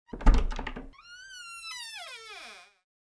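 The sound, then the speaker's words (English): A door opens: a knocking, rattling clatter of the latch, then a long, drawn-out hinge creak that bends downward in pitch before fading. Clear, with no voices. “Open the door.”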